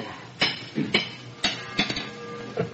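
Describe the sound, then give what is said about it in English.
A hammer strikes a metal horseshoe about half a dozen times at an uneven pace, each sharp clank ringing briefly before the next blow, with no voices in between, while shoeing horses. “You may be married tomorrow, but today you're shoeing horses.”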